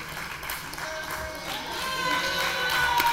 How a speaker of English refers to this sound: Audience, come on, give them a round of applause.